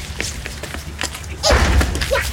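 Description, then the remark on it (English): Someone bangs on a loading bay door with a string of quick, muffled thumps, the pounding growing louder and busier partway through. “On the count of three, I want you to go and I want you to bang on that door and yell,”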